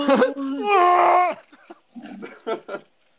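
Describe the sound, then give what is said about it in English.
A person imitates Chewbacca's scream: a loud, growly, wavering howl that climbs in pitch and lasts over a second, then gives way to a few short bursts of talking. “You do Chewbacca's like little scream there.”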